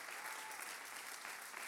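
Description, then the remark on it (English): A church audience claps in praise to the Lord for a member who is one year sober, a dense, steady wash of many hands applauding together at an even loudness for the whole stretch, with no pauses or distinct individual claps. “Would you hop up on your feet and give the Lord a hand clap of praise for her that she's 1 year sober today, glory to God, and living for Jesus.”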